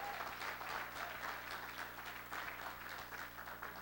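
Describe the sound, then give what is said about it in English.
A church audience applauds God in steady, dense clapping that holds at an even level for a few seconds, with no voices standing out over it. “Let's give God a big hand of applause this evening, this morning.”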